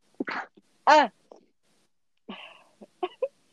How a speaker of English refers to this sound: Ew, what was that? That was the ugly version of my sneeze. I have a cute sneeze and I have an ugly sneeze. I think it came from me rubbing my eye.